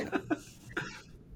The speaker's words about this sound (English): Hold on. Let me cough and drink some water.